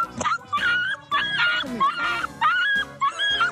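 A small puppy whimpers and yips in a rapid series of high, wavering cries, fairly loud, with brief pauses between bursts.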